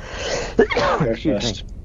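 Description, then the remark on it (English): A single sharp sneeze bursts out, quickly followed by people talking over it. “Bless you.”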